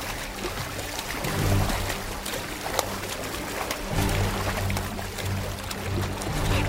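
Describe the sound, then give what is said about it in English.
Irregular water splashes and sloshing from something in the water ripple over a steady low mechanical rumble, with a few sharper bursts standing out; no one speaks. “The splashing's coming from over there now!”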